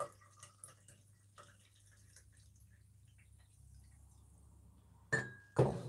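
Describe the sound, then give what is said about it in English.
A few faint clinks over a low steady hum, then near the end a brief, loud splash of coffee being poured into a cup, followed by a sharp ceramic knock. “And I'm gonna pour myself some coffee.”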